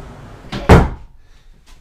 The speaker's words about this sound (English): Okay, let me just close my door here.